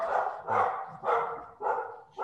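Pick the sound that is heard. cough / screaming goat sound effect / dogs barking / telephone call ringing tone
dogs barking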